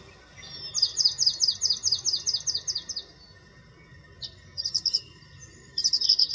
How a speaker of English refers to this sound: And we can hear them here just for a moment chattering away, and I love the sound of tree swallows.